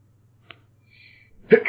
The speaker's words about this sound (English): I'm gonna sneeze, so this is gonna look really bad on the capture, so just bear with it.